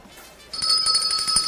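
bell ringing

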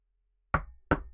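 knocking on a door

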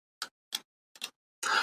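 clock ticking

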